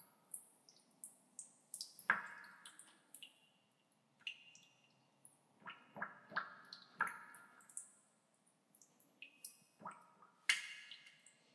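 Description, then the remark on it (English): Water drips steadily, each drop landing with a bright, plinking splash. The drops fall at irregular intervals, some quick in succession, some spaced apart, fairly quiet with no voices. “Third drop of water.”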